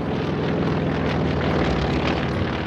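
A propeller airplane drones steadily overhead, its engine a constant loud rumble with a throbbing low hum that holds without a break from start to finish.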